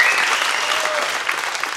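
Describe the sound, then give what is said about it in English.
A church audience claps together in a steady, dense burst of applause for the speaker's church family watching from Long Beach, a loud continuous patter of many hands with no voices standing out. “Would you guys mind giving a round of applause to my church family that's watching back in Long Beach?”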